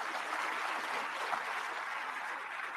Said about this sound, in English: And his 11th commandment. Yeah, that he deserves applause. Great president.